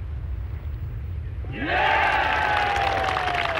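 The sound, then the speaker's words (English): A low, quiet background rumble gives way halfway through to a golf crowd bursting into a loud, sustained cheer for John Daly's three at the seventh hole, with rising whoops and shouts carrying on to the end. “Huge cheer goes up there.”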